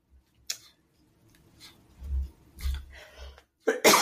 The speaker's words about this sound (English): Oh, excuse me, a little bit of a cough.